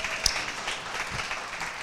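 An audience applauds in a steady, dense wash of clapping, with one sharp, louder clap standing out near the start. Nobody speaks over it.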